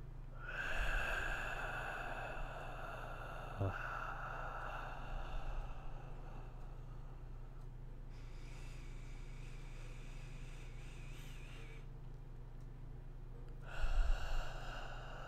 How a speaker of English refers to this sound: So, like, when I was breathing, I was, like, counting, like, how long it would take to breathe in, hold it for a second and then like breathe it out. So like actual 1 second. So I'd be like breathing in.